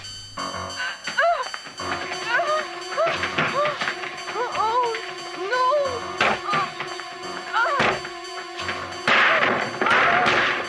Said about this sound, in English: Breaking a lot of furniture. Yeah, that's the door that'll have to get replaced. And Jamie Lee is about to smash the glass. Or the patio door will have to be replaced.